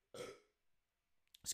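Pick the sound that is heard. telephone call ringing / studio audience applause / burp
burp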